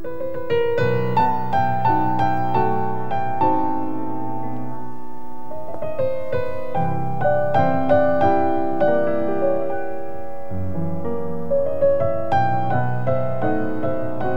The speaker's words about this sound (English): And of course, they're all instrumentals of various sorts, even though I've composed lyrics to some of them. A singer I am not.